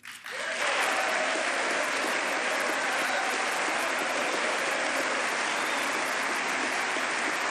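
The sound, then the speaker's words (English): A large crowd at Bill Clinton's State of the Union address bursts into sustained applause after the line "The era of big government is over," a dense, steady roar of clapping that swells in the first moment and holds loud and even throughout, with no voices heard. “Listen to all that applause.”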